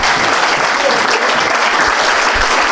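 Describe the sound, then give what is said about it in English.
Sustained audience applause at a golf event prize-giving for the winning team, First Tee Nightmares, with 96 points: a dense, even wash of many hands clapping at once, loud and steady throughout with no pauses or voices standing out. “Ladies and gentlemen, please give a big round of applause to First Tee Nightmares with 96 points.”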